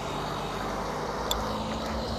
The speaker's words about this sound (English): Just waiting for a truck to get past. Oh, come on, mate. Don't you know I'm in the middle of a recording?